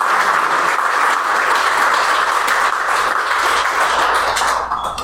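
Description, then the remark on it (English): A crowd bursts into sustained applause for Jennie Taylor, dense overlapping claps forming a loud, steady wash of noise that holds for several seconds before starting to thin out at the end. “So just to remind us that you're here, let's just give Jennie Taylor a round of applause.”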